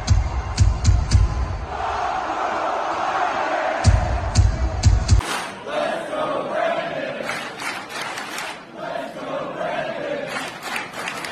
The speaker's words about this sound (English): Brandon, you also told me, as you can hear the chants from the crowd, let's go, Brandon.